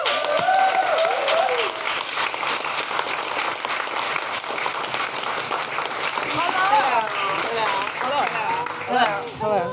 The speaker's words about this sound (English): She's an incredible stand-up comedian. Please, a big round of applause for Mary Lynn Rajskub.